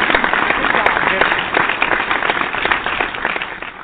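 hand clap sound effect

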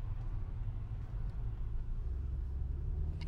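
car interior rumble

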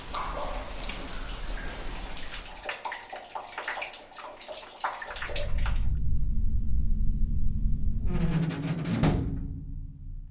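water dripping

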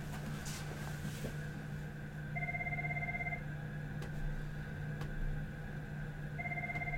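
telephone ringing

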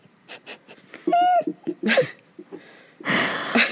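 yawning

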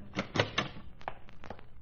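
door opening and closing

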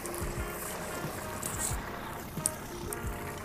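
boat moving through water

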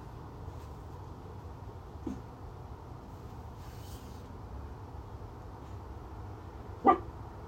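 dog barking

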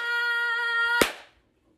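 hands clapping

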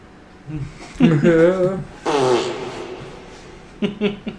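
soundboard fart sound effect

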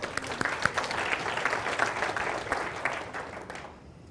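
audience round of applause

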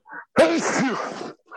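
sneeze

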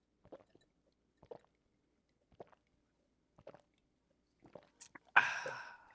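chugging beer

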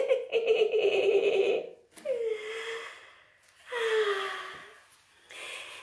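man snoring

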